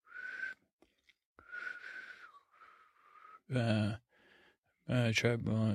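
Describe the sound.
A person's failed attempts to whistle: breathy, airy blowing with a thin, wavering whistle tone that never quite sets in, repeated in several short bursts, interrupted by louder voiced exclamations.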